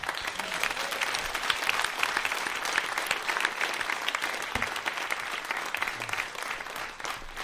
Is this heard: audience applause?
yes